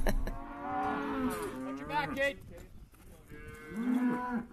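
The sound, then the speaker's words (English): Several calves and cows moo in long, overlapping bellows at a cattle branding, as calves await branding and castration and their mothers look on: a drawn-out chorus for about two seconds, a brief lull, then another loud moo swelling up. “There's a crescendo of mooing as calves await their turn for branding and castration, and the mothers look on.”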